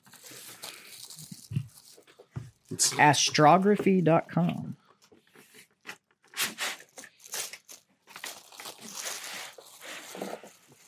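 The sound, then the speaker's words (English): Tissue paper crinkles and rustles in irregular bursts as a gift holding a framed photo is unwrapped, with a man's voice speaking briefly partway through. “Oh, there's something in the tissue paper.”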